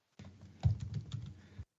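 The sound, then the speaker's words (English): A cat called Tuxie shreds a paper towel roll kept by a desk, making a steady run of scratchy, crinkling tears and rustles that swell briefly in the middle, with no voices. “And she hates the paper towels and feels the need to try to shred them.”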